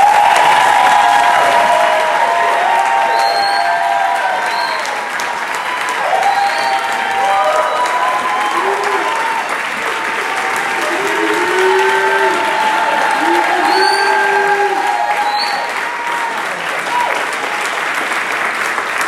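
An audience claps in a sustained, steady round of applause lasting the whole stretch, loud and dense, with faint scattered voices and a few cheers mixed into the clapping.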